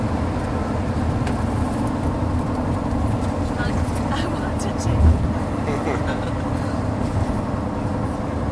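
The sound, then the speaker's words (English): A car passes by with a steady low road rumble that swells briefly midway, while a person speaks a few words over the traffic noise. “After this car comes through.”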